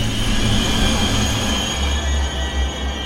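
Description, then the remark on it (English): A train rumbles heavily while its brakes squeal with a sustained, piercing high-pitched tone that runs steadily throughout, as it slows toward a halt, with no voices present. “Scout pulled on the train whistle.”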